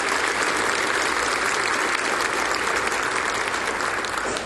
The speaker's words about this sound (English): Thank you, Nashville Flute Choir. Can we give them another round of applause and thank them for sharing the gift with us?